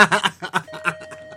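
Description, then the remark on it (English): A doorbell at a house sounds as a steady, clear electronic tone that starts partway through and holds to the end, under bursts of snickering laughter that fade as the tone rings on. “Oh, and that's the bell, the doorbell, guys.”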